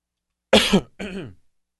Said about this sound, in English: Excuse me, that mute button is like slow. I still coughed in your ear. That's weird. Sorry about that.